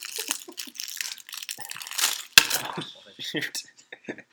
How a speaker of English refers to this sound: gave me this fortune cookie, so I'm going to open it up, and I don't know, maybe that'll give us something to talk about. So we're going to see what my fortune is. We're going to ASMR this.